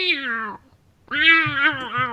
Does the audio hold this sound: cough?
no